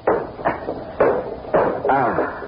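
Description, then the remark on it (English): A stuck window in a house by the sea is shoved and jerked open in about five hard, uneven thumps and rattles, each jolt followed by a short scraping decay, with a brief strained vocal effort near the end. “Now, I'm going to open this window.”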